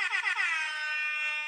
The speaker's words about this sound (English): I'm gonna give y'all an air horn too.